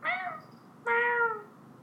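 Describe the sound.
A person imitates a cat, giving two drawn-out meows in a row, clear, the second slightly longer and falling in pitch, with no other talking.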